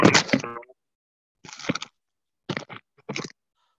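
A phone tumbles out of its holder with a few loud clattering knocks and scrapes, an initial rattling jolt followed by three shorter bumps, separated by silence with no voices.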